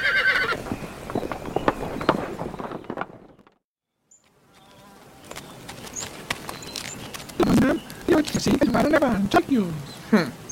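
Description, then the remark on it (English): A horse neighs and its hooves clip-clop in uneven steps, with a brief quiet pause midway before the hoofbeats and whinnying return louder, alongside a faint insect-like buzz. “Don't touch my horse. I need that horse to pull the barge.”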